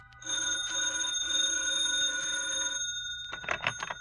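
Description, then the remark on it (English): A telephone bell rings loudly in a bright, rattling metallic trill, sustained for a few seconds with brief breaks, then stops and is followed by a short burst of clattering noise; it is a hotel wake-up call. “I left a call at the desk, turned over, and closed my eyes.”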